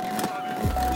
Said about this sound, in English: Hey, back on here, guys. Sorry, starting up the car.